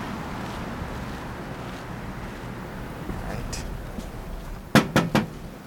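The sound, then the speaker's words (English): Three quick, firm knocks on a front door come near the end, fairly loud, after a stretch of steady outdoor background noise with a faint murmur. “Should I knock louder?”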